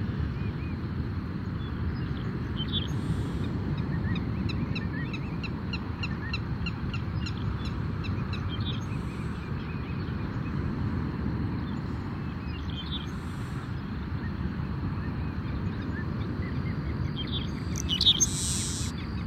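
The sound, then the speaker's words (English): Repeated shrill willet calls ring out in a rapid series over steady low wind or surf rumble, with a few sharper calls near the end. “Hear the willets again?”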